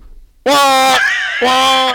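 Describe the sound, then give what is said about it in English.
A voice imitates a school fire drill alarm with two loud, sustained electronic-sounding tones, separated by a short wavering bridge and ending abruptly. “Fire drill.”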